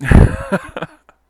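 A loud, breathy nose blow bursts out first, followed by a few shorter snuffling blasts that trail off into quiet, with no talking.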